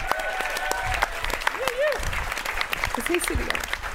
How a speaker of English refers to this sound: Let's bring him on one last time. Let's clap him in, team.